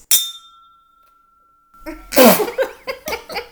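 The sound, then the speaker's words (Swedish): A single bright clink of drinking glasses touching in a toast, its high tone ringing out clearly for over a second before voices and a loud burst of noise follow. “Det jävlar vilka klang. Kvalleglas.”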